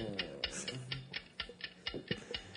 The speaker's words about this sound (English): It feels forced. I don't want the clock.